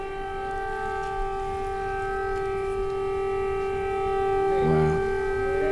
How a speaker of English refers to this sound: There's been an air raid siren just suddenly. Oh, here it is.